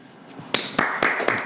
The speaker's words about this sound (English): Yeah, give a clap all around.